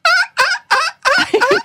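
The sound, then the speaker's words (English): A person imitates a dolphin's flipper noise as a trick, with a string of four or five loud, high, warbling squeals in quick bursts, the last ones running together into a rapid chattering trill. “My trick, I can make a flipper noise like the dolphin.”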